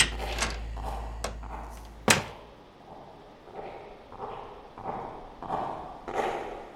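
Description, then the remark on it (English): Hard-soled footsteps thud at a steady walking pace along a hallway, a few sharper clacks early on, then evenly spaced muffled steps drawing closer and stopping outside a door, with no voices. “Oh man, they've stopped right outside the door.”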